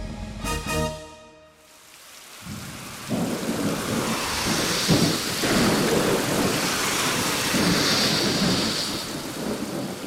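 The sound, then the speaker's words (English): Steady heavy rain hisses throughout on a rainy night, in a recreated scene of a drive back to Oklahoma City from Tulsa, with a deep rolling rumble of thunder building and swelling beneath it after a brief tonal opening. No voices. “were returning to Oklahoma City from visiting a college in Tulsa on a rainy night.”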